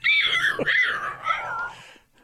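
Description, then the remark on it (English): A person's voice imitates a dying rabbit with a high-pitched, strained squealing wail that wavers for about two seconds before trailing off. “So don't make dying rabbit sounds?”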